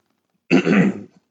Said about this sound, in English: excuse me. Had to burp there. Oh, wow. I was trying to hold it back. That kind of hurt.